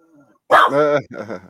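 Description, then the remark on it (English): An English bulldog lets out two loud barks, the first long and drawn out, the second shorter, after a brief faint murmur at the start. “They're both English bulldogs.”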